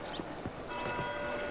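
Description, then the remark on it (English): Horse hooves clip-clop in a loose, uneven rhythm, four or five soft knocks, over a steady background hum with a faint sustained ringing tone. “All right, let's go back to the horse.”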